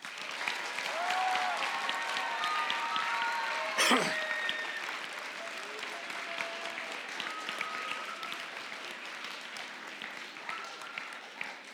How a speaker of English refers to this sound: All right, you guys. I always forget this, and I don't want to. Students, would you give your leaders a round of applause?